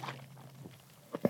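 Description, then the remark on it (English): A cup of Dunkin' Donuts iced coffee gets a quick shake very early in the morning, giving two short rattles of ice near the end after a quiet, faintly humming stretch. “See if you can hear that. That's the sound of”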